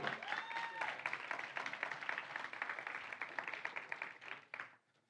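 An audience breaks into steady, dense applause welcoming a guest, with a brief whoop early on, the clapping holding strong for about four seconds before quickly dying away.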